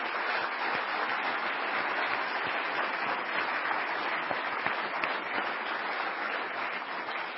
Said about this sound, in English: Let's have another round of applause for all of our honorees today.